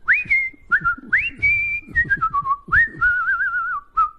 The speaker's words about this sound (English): Listen to me. Cheery little whistle on me, huh? Like everything's perfect in the world. Okay, yeah, I'm feeling good.